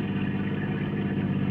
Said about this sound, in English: Another car coming around the curve ahead of us.